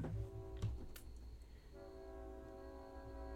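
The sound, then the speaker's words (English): A train passes, its horn sounding in two long, steady blasts over a low rumbling of the rails, with a couple of sharp clanks early on. No one speaks. “Do you guys hear the train or no?”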